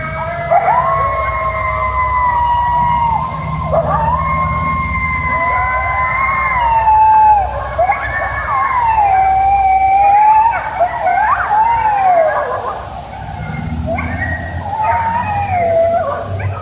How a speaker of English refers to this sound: You hear the truck going there.